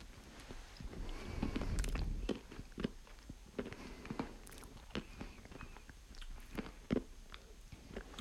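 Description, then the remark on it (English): Crunchy chewing of cake studded with rainbow candy pieces: irregular crisp crackles and soft bites repeating for several seconds, fairly quiet, with no one talking. “So we're going to get a little crunch with it.”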